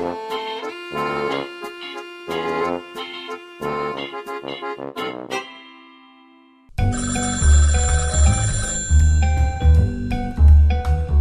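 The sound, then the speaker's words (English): A telephone rings in a quick, repeating pattern of bright chiming bursts, pauses briefly, then resumes louder and fuller against a busier background, with no one speaking. “the phone's for you. Pick it up.”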